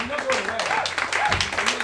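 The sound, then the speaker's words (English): A crowd claps and cheers steadily for a couple of seconds as the round one competitors are called back to the stage, a dense wash of hands with a few voices rising over it. “Let them hear it all the way to the stage for your round one competitors. Clap your hands for these fine people.”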